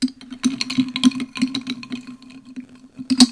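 Sipping iced coffee from a cup, with several sharp clinks of ice knocking against the sides over a low steady hum, the loudest clink near the end.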